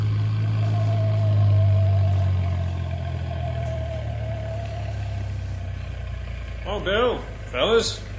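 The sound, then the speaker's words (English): A truck engine rumbles heavily, loudest early on, then settles into a steady lower drone as it rolls along; brief voices break in near the end. “You better meet the truck outside of town at Beaver Creek School instead of the town limits like we usually do.”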